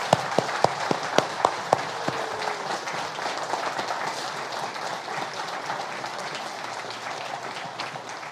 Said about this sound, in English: Let's give Brother Stucky a round of applause.